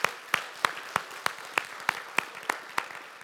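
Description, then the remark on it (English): A church audience applauds to celebrate two students in the student ministry who chose to trust Jesus. About ten sharp, evenly spaced claps stand out in a steady rhythm over a soft wash of background clapping. No one speaks. “Come on, let's celebrate.”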